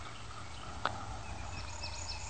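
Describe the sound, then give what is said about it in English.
A single faint gobble from a distant wild turkey, one short burst rising briefly above a steady outdoor hiss of wind and insects. No one speaks. “we're talking about maybe how far away these turkeys are from us”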